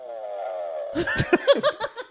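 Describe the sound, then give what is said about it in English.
A recording of a purported Bigfoot groan: a low, drawn-out groan with a slowly sagging pitch fills the first second, followed by a quick run of short, breathy bursts that sound like laughter. “It sounded like a Bigfoot fart. It sounded like he was either sad or pooping.”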